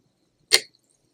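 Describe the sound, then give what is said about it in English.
A single sharp clink of champagne flutes touching in a toast right in front of a microphone, a bright, high ringing tone that fades quickly in a quiet moment with no talking. “Here, let's cheers, like, right in front of our microphone.”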